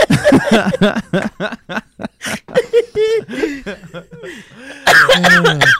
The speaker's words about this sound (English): Sorry. That cough sounded so weird.